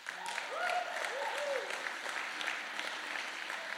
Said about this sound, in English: Meadows at this time has done that, and get ready to applaud, over 700 people.